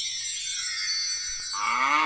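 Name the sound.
cow mooing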